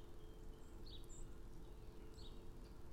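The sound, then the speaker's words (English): A few soft, brief bird chirps sound faintly over a steady low background rumble, with no one speaking. “And the birds certainly remind us of that, how simple life can be if we just sit down and rest for a moment.”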